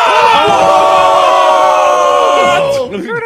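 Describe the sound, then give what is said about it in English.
A voice imitates a roaring crowd cheering a big postseason dunk by Morant in the lane over Malik Beasley, in a dramatic reenactment: a loud, sustained, strained shout held for about two and a half seconds, then breaking off into shorter ragged yells. “Are you going to be the crowd?”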